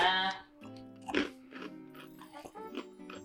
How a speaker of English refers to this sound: Okay, crunchy. What flavor is this? It just says snack mix. Is there a flavor? It just says snack mix.